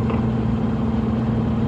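A steady, low engine rumble fills the space with a constant hum and no breaks, like riding inside a bus while it idles or cruises along.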